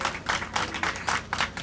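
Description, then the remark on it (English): A group of employees on the ground applauding as a spacecraft capsule deploys its parachutes, a dense, steady patter of many hands clapping at once in brief swelling waves, moderately loud with no talking over it. “You can hear the clapping on the ground here.”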